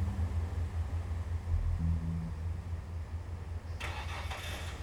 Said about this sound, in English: The car started up and drove off.